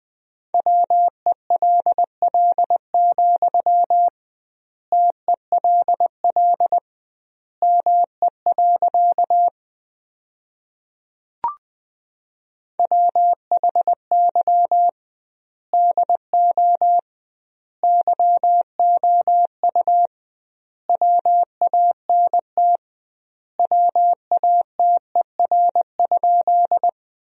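Morse code sent at 20 words per minute, sentences built from the top 200 words with doubled word spacing: a steady mid-pitched beep keyed into quick dots and dashes, grouped into words separated by short pauses. A single click sounds in one gap.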